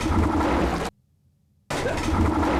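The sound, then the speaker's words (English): A shark roar sound effect from a redone film scene: a loud, rough roar, somewhat like a drawn-out tiger or lion roar, in two sustained bursts split by a brief near-silent gap with only a faint low rumble. No one speaks. “You know, I mean, what do I'm hearing a little bit of tiger in there. Maybe, you know, maybe a drawn out lion or something like that.”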